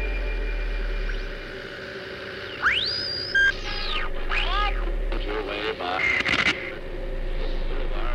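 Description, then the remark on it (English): Steady hiss of radio static running throughout, broken by rising and falling whistles and warbling tones, like a shortwave dial being tuned, with a short crackling burst near the end. “Listen, there's a voice hidden in the static.”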